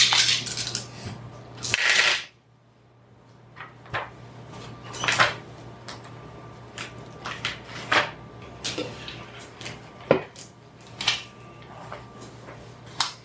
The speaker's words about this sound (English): I rolled 5 sixes. Okay. So half of them are sixes.